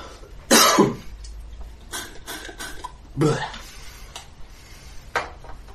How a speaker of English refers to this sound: Cough still hasn't quite gone away.